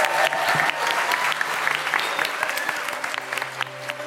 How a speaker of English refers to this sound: Give yourselves a massive round of applause.